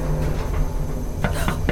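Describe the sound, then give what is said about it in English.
Three quick, hollow knocks on the walls of a moving elevator land near the end, over the elevator's steady mechanical hum. They are distinct, with no voices. “We're in a moving elevator. Who could be knocking on the walls?”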